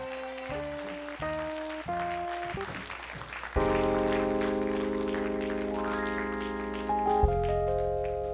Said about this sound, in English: Now will you give the Lord a hand clap of victory?